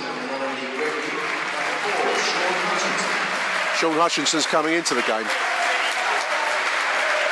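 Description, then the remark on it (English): A Millwall football crowd applauds two-goal striker Lee Gregory as he is substituted off. A steady, dense wash of clapping holds at the same level throughout, while a man's voice speaks briefly over it partway through. “Good applause for our two-goal striker, Lee Gregory.”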